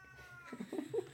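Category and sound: animal, cat meowing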